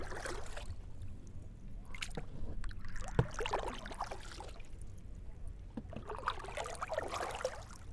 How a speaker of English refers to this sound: More so because of the sound of the water just brushing by the boat and the oars cutting through the water like a hot knife in butter.